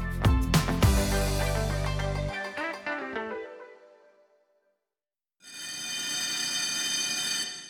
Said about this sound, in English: That bell means we're out of time for today.